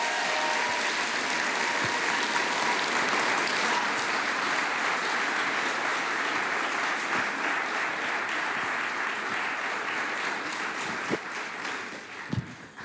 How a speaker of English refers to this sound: why don't you welcome them and let's give them a big cheer as they come up.